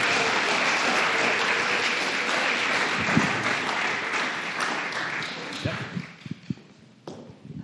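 A crowd breaks into steady, dense applause, a sustained wash of many hands clapping that thins out toward the end, leaving a few scattered claps and small thumps.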